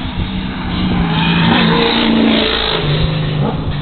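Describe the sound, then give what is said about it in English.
The engine of the Budweiser race car revs hard and steadily, its loud, buzzing roar rising and holding with harmonic whine throughout, with no voices present. “I've known Mayer for a while, and JB was driving the Budweiser car that came from Mark Coffey.”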